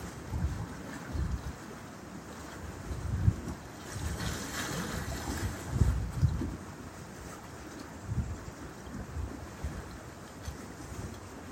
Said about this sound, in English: And the wind is energizing the air.